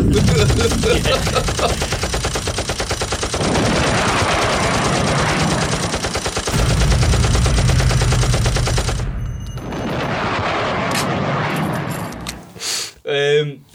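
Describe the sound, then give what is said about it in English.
Loud, dense bursts of rapid automatic gunfire rattle almost continuously, layered with deep booming explosions and chaotic battle noise, briefly thinning before a final few sharp blasts. “Please put some explosions in there. Sound effects.”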